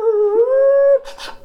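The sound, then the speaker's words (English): A dog, being beaten, lets out a drawn-out, high whimpering whine lasting about a second, fairly loud, followed by a couple of short, rough noisy bursts. “Oh my gosh, what are you doing? You're beating up our dog.”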